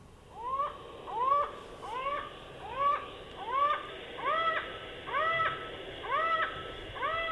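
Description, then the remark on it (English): A bird gives a long series of loud, evenly paced laughing 'ha-ha-ha' calls, a dozen or so harsh notes repeated steadily with no voices present. “The series may be introduced by faster ha ha ha ha ha ha calls, suggestive of maniacal laughter.”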